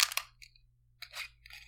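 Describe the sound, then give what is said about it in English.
A screw-top wine bottle being twisted open: short bursts of crisp, crackling clicks as the cap's seal breaks, with brief pauses between twists. No talking. “Anywho, I'm gonna crack open this wine. Also, it's a screw top.”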